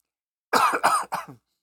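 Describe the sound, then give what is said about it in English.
A short burst of three quick coughs in a row, fairly loud, the last one slightly weaker, with silence before and after. “Sorry for that pause. I had to cough.”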